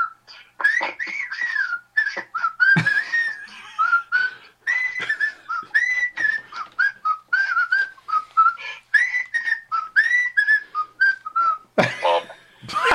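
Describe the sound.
A person whistles the Andy Griffith Show theme tune, a cheerful, bouncy melody, the tune moving in short, rhythmic phrases for about thirteen seconds, slightly breathy and uneven, with a brief noisy breath near the end.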